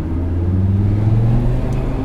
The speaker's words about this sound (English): Right, we're on sport engine sound now. I'm going to go around a roundabout and see if you can hear the difference.